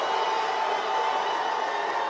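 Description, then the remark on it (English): A large crowd in Atlanta roars and cheers continuously for one of the last two competing crews, its noise measured on a decibel meter; a dense, steady wall of voices without any break or single voice standing out. “It looks like they're still going for Unruly.”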